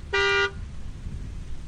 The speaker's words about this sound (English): Just then, two lights appear straight ahead, and the sound of an old engine rises in the middle of the downpour. The rusty pickup's headlights are blinding, and James uses his horn to signal their location.